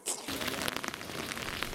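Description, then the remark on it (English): Steady rain falls outside a slaughterhouse in San Cristobal, Venezuela, a dense, hissing patter of drops striking hard surfaces, continuous and moderately loud, with no voices. “Under the rain and wearing face masks, these Venezuelans wait outside a slaughterhouse in San Cristobal for the only protein they can get, cow's blood.”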